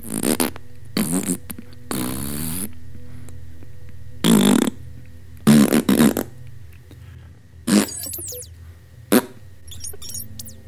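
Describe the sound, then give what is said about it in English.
A series of slowed-down fart sounds, made by gas passing through the sphincter with the skin flapping together, deep and drawn out, come in several separate bursts with pauses between them, some long and rumbling, others short and sputtering, over a low steady hum. “When air passes through it, it can make a sound. And that's the skin flapping together. That's like really slow. But really large.”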